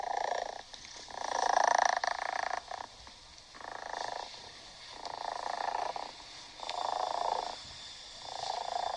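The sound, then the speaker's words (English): A tiny female foster kitten, about the size of a hand, purrs in steady, rhythmic pulses, each rumbling breath cycle rising and falling for several seconds with a slightly raspy, buzzy texture and no talking. “Besides, I just recorded a bunch of my foster kitten purring.”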